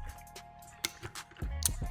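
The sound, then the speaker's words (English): Someone drinks water: a few sharp clicks and knocks from a bottle, followed by low, rhythmic gulping swallows. No one speaks. “Before I do, let me get a swig of this motherfucking water, man.”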